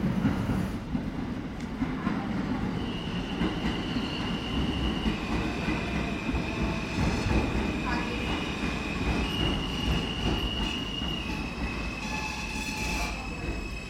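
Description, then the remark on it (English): A subway train rumbles steadily through the elevated Smith–9th Street station, 26.7 metres above ground, wheels screeching in long high-pitched squeals over the constant low roar, loud for the whole stretch. “We were talking on the subway platform at Smith 9th Street Station.”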